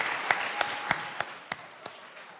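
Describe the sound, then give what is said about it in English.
Soft, steady crowd applause forms a hiss of clapping, with a few louder individual claps popping out at an even beat of about three per second, applauding a group at an evening awards event. “Let's have one more round of applause for this great group.”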